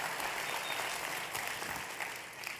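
A crowd breaks into steady, sustained applause, a dense wash of many hands clapping at once with no pauses, holding a fairly even loudness throughout before easing slightly at the end.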